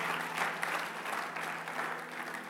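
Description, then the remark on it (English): An audience claps steadily as a clap offering to God, a dense wash of many hands with a few louder bursts, sustained and even in volume throughout, with no one speaking over it. “If you believe that, give him a clap offering tonight.”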